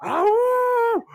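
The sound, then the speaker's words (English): A person lets out one loud howl lasting about a second, swooping up in pitch, holding steady, then dropping off abruptly, followed by a brief quieter vocal sound. “And just starts like yelling and howling and making as much noise as possible in a library.”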